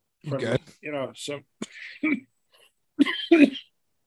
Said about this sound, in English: excuse me, strong cough.